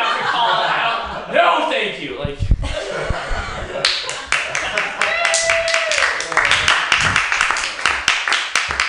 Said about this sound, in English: Clapping feels like patronizing. You got an applause right now.